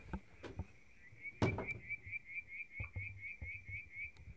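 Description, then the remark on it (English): Frogs and crickets chirp together outdoors in chilly air in a steady, rapidly pulsing trill, moderately quiet and continuous, with a few knocks and a louder clatter partway through. No one speaks. “I can hear some frogs and crickets.”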